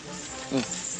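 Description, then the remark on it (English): A single short pig grunt, brief, rising out of a steady hissy background with no other voices around it. “there's one of my co-stars, Vance the Talking Pig. Say something, Vance.”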